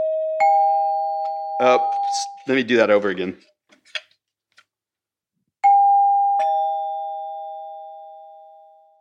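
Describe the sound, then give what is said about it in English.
An electric doorbell rings a clear two-note ding-dong chime, a voice briefly speaks, then the chime sounds again, its tones ringing out loud before slowly fading. “And then out of the war, in the 50s, they realized that you could make reasonably pleasant electric sounds without actually using those long, cumbersome bells.”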